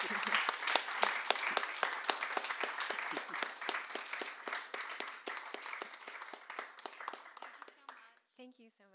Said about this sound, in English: Can we do a round of applause? Oh. Thank you.